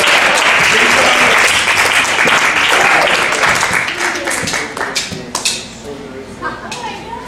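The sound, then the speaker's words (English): A crowd claps together as a clap offering for supporting partners, a dense, sustained burst of applause that stays loud for several seconds, then thins out into scattered claps as it fades, with a voice speaking faintly underneath. “And let's just give a clap offering for the partners that have been partnering with us.”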